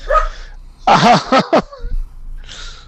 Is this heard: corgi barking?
yes